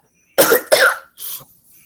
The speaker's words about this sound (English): Excuse me, I got a cough.